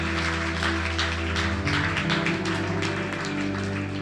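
A crowd claps its hands for Jesus after a prayer, steadily and fairly loudly, a dense patter of overlapping claps over sustained musical tones holding underneath. No one speaks.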